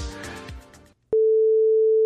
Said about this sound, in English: So okay, so you're going to hear a beep.